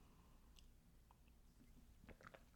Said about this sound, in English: I'm going to sip my cacao again.